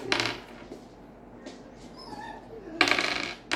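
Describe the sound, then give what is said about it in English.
A dog whimpers softly with a few thin, high whines as she sees someone she wants to go to, set between bright metallic jingling bursts at the start and end, like tags or coins clinking. “Dogs are so sweet.”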